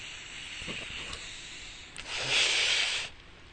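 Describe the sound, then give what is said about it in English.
A soft airy slurp as someone takes a last sip of a drink, one breathy drawn-in burst lasting under a second over a low steady hiss, with no talking. “So, oh, let me take this last sip before I get to work here.”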